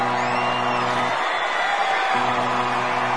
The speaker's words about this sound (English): Well, there's the starting alarm, and the racers are lining up. The crowd is really excited, and it is a great spectacle to see these identical little cars.